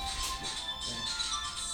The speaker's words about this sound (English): That was a Nokia ringtone.